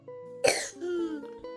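A child gives one sharp cough, followed by a brief throaty, voiced rasp as it fades, with a faint steady hum in the background.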